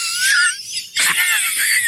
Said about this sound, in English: Over there, Master Control, wheezing into his mic